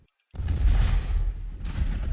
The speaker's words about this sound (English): A sound of thunder.